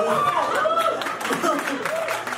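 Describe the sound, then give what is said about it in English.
Scattered audience applause rises briefly beneath overlapping voices, a dense patter of claps mixed with chatter and laughter, steady for a couple of seconds. “Don't applaud it.”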